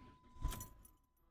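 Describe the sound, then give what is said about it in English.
A car engine cranks and fires up in a short, loud burst on a very hot day, then settles into a low idle with a thin, steady squeal running underneath, keys jingling. “It's squealing a little bit.”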